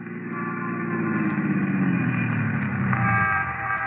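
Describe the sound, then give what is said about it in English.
A police squad car drives along with its engine rumbling steadily as a horn honks in long, sustained blasts over it, fairly loud, with no voices. “We climbed into a squad car and hurried back to Barbara Carroll's apartment”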